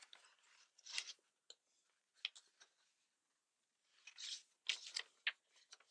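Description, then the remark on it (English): A hole being torn in a sheet of paper: paper tearing and crinkling in several bursts of crisp, rasping sound with short pauses between them, ending in a longer cluster of ripping. No one speaks. “I'll use this paper to indicate what I mean.”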